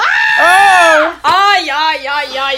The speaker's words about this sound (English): Okay, we're gonna be screaming a lot this episode.